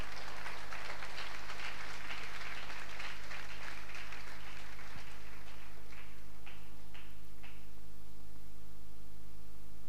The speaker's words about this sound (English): Let's clap to Jesus. Applaudissons pour Jésus. Clap to Jesus. Applaudissons pour Jésus.